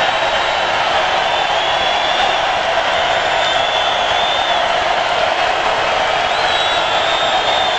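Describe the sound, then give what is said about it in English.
A huge crowd roars and cheers without pause, a loud, dense wash of voices that stays steady for the full length with no individual words standing out. “Listen, this, the roar continues.”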